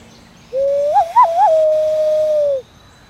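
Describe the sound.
A long, hollow, tremulous wail imitating a loon call, made by blowing through cupped hands: a single sustained tone with a few quick wavering rises near the start, lasting about two seconds alone.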